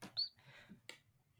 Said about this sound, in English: I'm just enjoying the bird song. Who's got a little twittering bird?